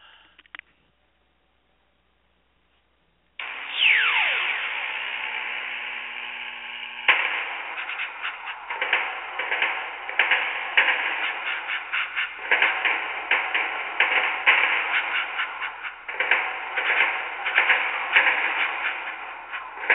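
Contemporary solo percussion music begins after about three seconds of silence, with a falling scrape, then dense clattering and sharp struck hits that churn on loudly and continuously without voices.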